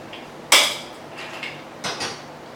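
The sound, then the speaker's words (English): Big ice cubes clink against a cocktail glass: one sharp bright knock, a few softer rattles, then a second cluster of clinks near the end, with no voices. “Some good big ice cubes.”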